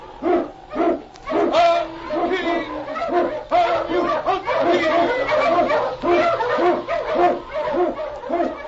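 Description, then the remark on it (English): A pack of Eskimo sled dogs barking and yelping together loudly on the trail through storm and snow, in the old-time radio show The Challenge of the Yukon; the overlapping barks form a steady, excited chorus that runs without a break for several seconds. “The swiftest and strongest of Eskimo lead dogs blazes the trail through storm and snow for Sergeant Preston as he meets the Challenge of the Yukon.”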